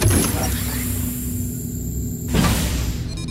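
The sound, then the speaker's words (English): A rocket's mechanical door, closed by pressing a button, slides shut with a low rumbling hum and whirring motor tone lasting a couple of seconds, ending with a soft thud as it seals. “Oh, this one closes the door.”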